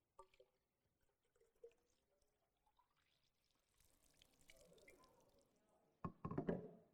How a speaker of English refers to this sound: Egad, did he just do that? Overflowing water.